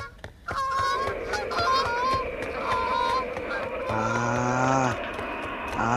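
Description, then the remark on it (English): Three black geese honk loudly and repeatedly, their harsh calls overlapping in a noisy, agitated flurry, with a long drawn-out honk near the end. “She rescued her brother, but the three black geese woke up Baba Yaga and she began to chase them.”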